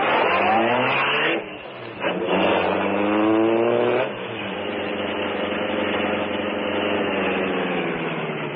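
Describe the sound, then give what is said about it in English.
The sleek black car of the Green Hornet revs loudly, dips briefly, then roars again and pulls away, its steady motor drone continuing with no voices present. “the sleek black car of the Green Hornet was housed. Is the car ready, Cato?”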